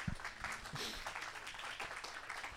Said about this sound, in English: can I just have a round of applause